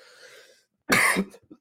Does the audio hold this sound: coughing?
yes